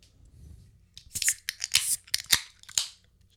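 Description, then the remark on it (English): A drink container being cracked open: a run of sharp, crackly snaps and tearing bursts in quick irregular succession, bright and fairly loud, with no talking. “Let's crack this open, huh?”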